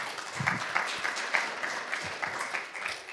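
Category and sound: crowd, audience clapping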